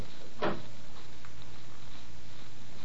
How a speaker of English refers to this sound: I unlocked the door and opened it.